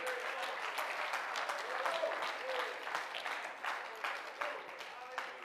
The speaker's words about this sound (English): Come on. Clap your hands and praise Him for it tonight.